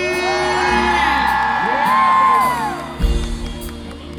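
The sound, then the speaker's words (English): A concert crowd of women screams and cheers loudly when called on from the stage, high-pitched shrieks and whoops swelling together for several seconds before a low rumble takes over. “Ladies, if you're feeling good and you're looking good, let me hear you scream.”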